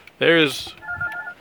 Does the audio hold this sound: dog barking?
no